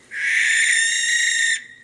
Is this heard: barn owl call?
yes